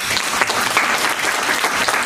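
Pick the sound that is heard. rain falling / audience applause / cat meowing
audience applause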